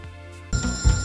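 A telephone starts ringing abruptly partway through, a loud, bright trilling ring for an incoming collect call in a film scene, cutting in after a brief moment of low steady hum. No one speaks.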